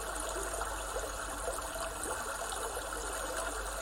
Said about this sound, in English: This bubbling brook is trying to teach you something. Lean in and try to work out what it is saying to you today.